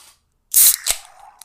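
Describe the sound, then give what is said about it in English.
A loud fizzing rush of a vanilla oatmeal milk stout beer being poured, with a sharp splash partway through, then a softer steady trickle and fizz. Brief, with no voices. “And you pour that bitch like that this.”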